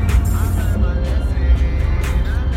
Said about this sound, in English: We were on our way back from the Baltimore Tattoo Convention. Our flight got canceled, so we just jumped in a car, and now we're driving back. We're supposed to be in New York in couple hours.